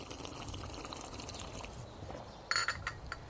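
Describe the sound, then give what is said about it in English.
Tea pours steadily in a soft, continuous trickle, followed by a few brighter clinks and splashes near the end, fairly quiet with no voices. “Drink up all the tea, Mr.”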